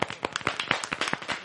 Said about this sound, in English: Yes, let's give old Ronnie a round of applause.